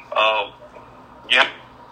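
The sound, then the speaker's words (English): A tinny voice over a phone line comes through in two brief garbled fragments, separated by a dropout of near silence, as the caller's phone cuts out. “His phone cut out.”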